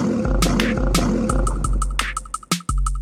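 A deep, rumbling lion roar sounds loud, layered with sharp rhythmic percussive hits and a brief dropout near the end; no one speaks.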